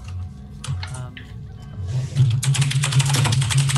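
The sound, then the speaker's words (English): Rapid, clattering keystrokes on a loud clicky mechanical keyboard with blue switches, starting sparse and building into a dense, continuous burst of typing, prominent with no talking. “While the players look up their spells on their mechanical keyboards.”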